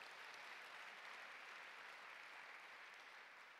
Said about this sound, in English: If you believe it, would you give the Lord a clap offering in this house?